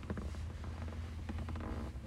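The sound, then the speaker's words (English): Soft, irregular creaks of a leather seat shifting under someone sitting on it, a few brief rubbing squeaks over a steady low hum, with no talking. “You could probably hear the leather on the seat that I'm on right now.”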